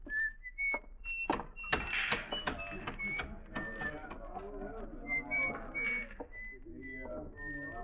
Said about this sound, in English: On a sunny day, you could see him walking down the shady side of the street, whistling and handling the oddments in his little pocket.